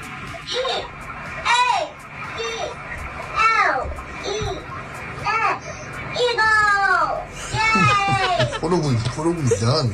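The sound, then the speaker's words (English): A toddler girl's high, wavering voice sings and babbles in short melodic bursts from her toddler bed, picked up by a baby monitor in her room; rising and falling pitches with brief pauses, fairly loud over a faint background hiss. “So this is what they caught her singing.”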